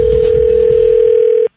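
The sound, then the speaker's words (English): A steady electronic telephone tone rings out loud and unbroken for about a second and a half as a prank phone call is placed to a mother, then cuts off abruptly into silence, with no voices. “So we called her and messed with her.”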